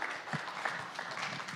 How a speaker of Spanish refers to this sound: Denle fuerte palmas al Señor, nuestro pastor con nosotros.